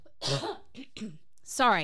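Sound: cough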